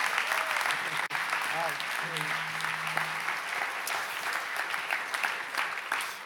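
Steady applause from an audience at ICF as a guest is welcomed on stage, a dense wash of clapping that holds at an even level for several seconds, with a faint low tonal hum running underneath partway through.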